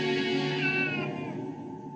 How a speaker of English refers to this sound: Stop looking at me. Stop looking at me. Stop looking at me, you fucking cat!